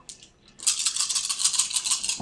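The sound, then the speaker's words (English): A small die clatters and rattles in a quick, bright run of ticks for about a second and a half, then settles with a soft thump. No one speaks. “No, wait, it's just one dice.”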